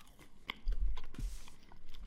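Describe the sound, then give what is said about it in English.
Soft wet chewing of limp, soggy seasoned fries, a steady mushy mastication with occasional smacking clicks and no crunch, heard alone without talking. “They're soft. And no crunch. They're kind of all sogged.”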